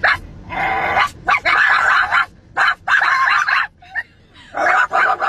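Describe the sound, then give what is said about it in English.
Two children imitate dogs, barking at each other in loud bursts of barking and yipping, several rapid barks at a time separated by short pauses, going back and forth. “Those are kids barking at each other.”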